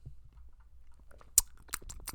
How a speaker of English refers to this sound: I just took a sip of water for ASMR purposes. Hydration Nation.